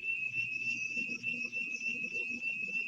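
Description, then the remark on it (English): A house's security alarm goes off in video of a living room, sounding as one continuous, piercing high-pitched electronic tone that holds steady for the whole clip, over a low, muffled rumbling background. “And then all of a sudden, the alarms in the house go off.”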